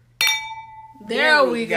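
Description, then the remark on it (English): Champagne glasses clink together once in a toast, a bright tone ringing out and fading over most of a second before someone starts talking over a low background hum. The champagne being drunk is Andre Blush. “Cheers. That I didn't like how that sounded. Really, like a brick hitting another one.”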